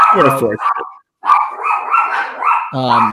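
Two dogs bark frantically, both freaking out, with loud sharp bursts opening and closing the moment and a stretch of continuous excited yelping and whining in between.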